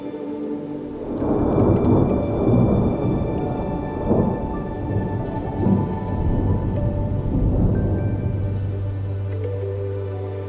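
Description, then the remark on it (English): A steady night rainstorm hisses throughout while deep thunder rolls in several loud, rumbling waves, swelling and fading over the steady downpour. No voices. “After a while, a flash of white light streaks across the sky as rain pours steadily, rhythmically.”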